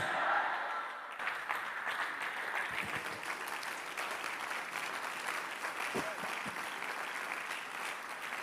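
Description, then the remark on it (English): A crowd applauds steadily for about eight seconds, a dense, even wash of many hands clapping at a constant loudness, with a few brief vocal shouts mixed into the clapping. “Clap your shout and say yes.”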